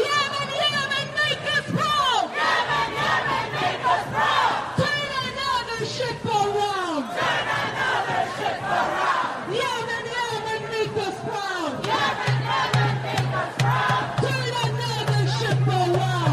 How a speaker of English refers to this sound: And there was, listen to this chant in New York City, Cut 15.